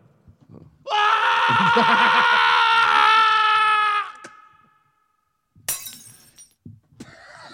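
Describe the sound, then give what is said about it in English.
A light bulb down in a courtyard shatters with a sharp, bright crash and a scatter of tinkling fragments as a man jumping from a building lands on it, right after a loud, sustained, wavering scream-like wail cuts off into a moment of silence. “It sounds like he landed on the one light bulb that we had down in the courtyard.”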